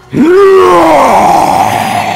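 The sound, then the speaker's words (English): A person's voice imitates a loud, drawn-out roar that surges up in pitch, holds, then slowly sags over about two seconds, with no other talking. “roar comes across the battlefield.”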